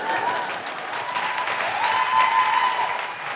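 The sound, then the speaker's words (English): A crowd applauds steadily, a dense wash of many hands clapping at once, sustained and fairly loud for a few seconds with no talking over it. “Anything that gets a round of applause is too good.”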